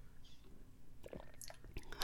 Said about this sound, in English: Just having a sip of tea. I timed that perfectly.